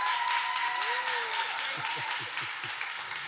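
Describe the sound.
A crowd claps and cheers steadily, with a dense wash of applause and a rising whoop from a voice amid it, plus scattered shouts and voices throughout. The cheering is for a person being baptized at a church service.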